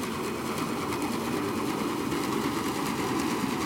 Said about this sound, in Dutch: Ik hoor zo'n brommetje of zo. Nou, wat je volgens mij hoort hier zijn de motoren van het schip. Dat is een beetje dat lage geluid wat je hoort brommen. Dat zit vooral rond de 125 hertz.